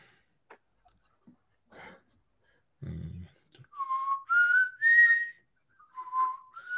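Someone whistles a short tune of clear, steady notes that step up and down in pitch, preceded by a few scattered clicks and a brief low rumble.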